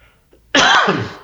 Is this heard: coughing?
yes